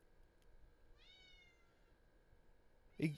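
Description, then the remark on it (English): A cat named Mimi lets out a thin, drawn-out meow, then after a pause a louder, sharper meow, over a low steady background hum with no talking. “Even my fucking cat knows.”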